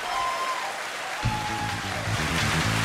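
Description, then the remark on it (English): A studio audience bursts into loud, steady applause, with cheering voices joining in partway through and the crowd noise swelling toward the end. “Enough cheering.”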